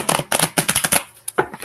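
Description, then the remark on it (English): A deck of tarot cards being shuffled up close for a Taurus reading: a quick run of crisp, rapid riffling bursts for about a second, a short pause, then a final brief flurry of cards. “One more shuffle for Taurus.”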